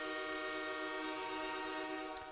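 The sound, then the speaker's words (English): A loud, sustained train horn blares steadily for a couple of seconds, its rich harmonic tone holding unbroken with no talking. “Get that wide receiver train horn going.”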